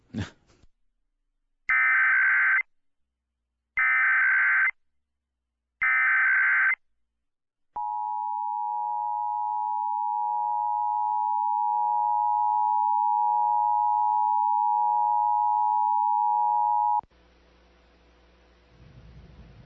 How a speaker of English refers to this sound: This is a test of the emergency alert system. Had this been an actual emergency, you would have been given further instructions. This concludes our test of the emergency alert system.